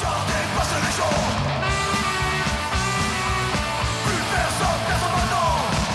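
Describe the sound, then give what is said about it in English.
Loud, dense saxophone music trading off with bursts of shouting, both sustained at a steady high volume for the full few seconds. “That sounds like a pretty good mix right there. Saxophone and shouting.”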